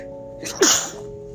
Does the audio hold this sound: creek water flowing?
no